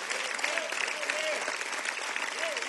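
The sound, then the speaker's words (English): A crowd bursts into steady, dense applause, many hands clapping together, with a few faint voices rising over the sustained clatter. “Come on, somebody clap if you're willing to start being a producer.”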